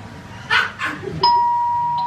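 doorbell ringing

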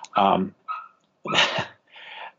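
small dog making noise

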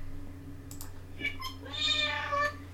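several cats meowing

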